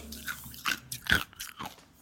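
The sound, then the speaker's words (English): Crisp crunching as ice is chewed, with several sharp bites at an uneven rhythm over a couple of seconds, no talking. “They say crunch, when you crunch. Chew ice, it means that you're sexually frustrated.”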